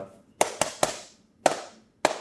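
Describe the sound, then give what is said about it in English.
An imitated secret vampire knock tapped out on a hard surface: three quick sharp raps, a pause, then two more evenly spaced knocks, crisp and fairly loud with no talking. “So when they get there, there's a secret vampire knock.”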